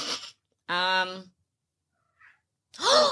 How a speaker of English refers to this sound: Cat made a noise.